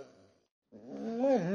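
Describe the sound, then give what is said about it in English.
A voice imitates a low, rough snore, then after a short pause breaks into a rising, wavering whimper that grows louder and more strained. No words are spoken. “to the right of where you are all at, you can hear what sounds like snoring and whimpering at the same time.”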